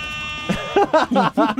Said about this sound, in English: It's the hip-hop air horn. You can just download that on the Android store.